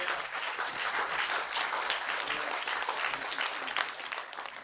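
A church audience on the Gold Coast applauds to welcome a guest speaker, many hands clapping in a dense, sustained wash that holds at an even level throughout, with no voices speaking over it.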